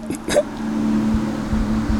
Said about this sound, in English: I got the hiccups.